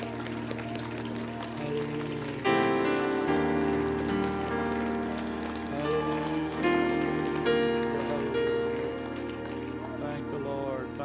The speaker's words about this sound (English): Would you mind clapping your hands in praise to the Lord tonight?